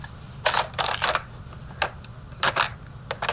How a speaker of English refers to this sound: Let me see if I can open this drawer and find an Imodium. Oh, fuck, I thought for sure I could.